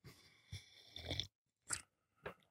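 Crinkling and crackling of a small 12-ounce plastic bottle of Ice Mountain spring water from Michigan as someone drinks from it, one long squeeze followed by two short sharp crunches, with brief quiet gaps between. No talking.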